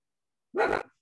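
A single short, clear bark from Ernie the dog, on holiday, a sharp voiced burst that fades quickly with no other sounds around it.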